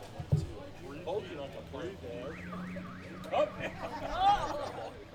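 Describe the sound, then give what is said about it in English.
A car alarm goes off during a baseball game, its electronic tone sweeping up and down in a rapid, repeating warble for about a second, heard under a man's ongoing speech and crowd noise. “And we have our first car victim of the game.”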